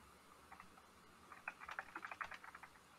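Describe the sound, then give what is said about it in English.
Rapid, irregular clicking of keys on a non-mechanical computer keyboard, a few taps at first and then a quicker burst, fairly quiet, with no talking. “Stop typing. I'm hearing your keyboard.”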